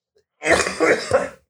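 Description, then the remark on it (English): A loud bout of throat clearing and coughing, about a second long with two or three rough bursts, heard alone with no talking. “My cough, hang on, 等我一下.”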